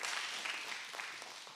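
An audience applauds with steady, dense clapping from many hands, a soft, continuous patter with no voices over it.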